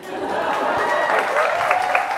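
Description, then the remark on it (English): An audience breaks into applause, a dense, steady wash of clapping that holds at an even loudness for about two seconds, with a faint voice or whistle poking through the noise. “That was an applause break.”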